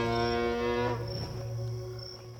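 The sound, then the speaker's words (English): A squawk from a pet chicken named Bluebell, slowed about eight times and pitched far down into a deep, rich bellow, its harmonic roar lasting about a second before settling into a steady low drone, with a faint high whine above. “That's Johnny's pet chicken, Bluebell, just slowed and pitched way down.”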